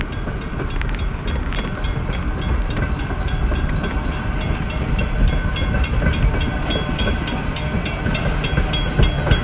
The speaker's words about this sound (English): Yeah, there's no way around this fucking train. Motherfucker. Great timing. Just awesome.